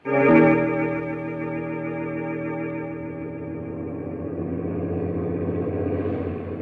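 A truck engine starts with a loud burst, then settles into a steady, low droning rumble that continues throughout. It is fairly loud, with no voices, as the truck drives through a foggy night.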